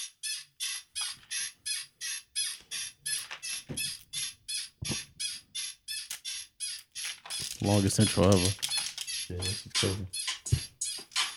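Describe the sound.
A bed squeaks in a steady, fast rhythm, high-pitched creaks repeating about three times a second throughout. Near the end a man's voice speaks briefly over the continuing squeaks.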